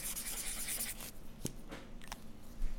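A pen scratches and scrapes across paper in short strokes as someone brainstorms on paper, with a brief sharper tap partway through and a quiet hum underneath; no one speaks.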